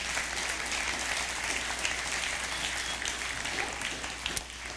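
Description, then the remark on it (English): A steady round of applause from a church audience, dense and even clapping filling the whole few seconds at moderate loudness, with no voices standing out. “Let's give you guys a round of applause for what you did.”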